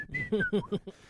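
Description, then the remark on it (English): A person briefly whistles a few descending notes of a tune, imitating Mickey Mouse whistling in the black-and-white Steamboat Willie cartoon, mixed with voiced vocal bursts, fairly quiet, lasting about a second. “Yeah, we see it every once in a while, you know, where he's whistling like.”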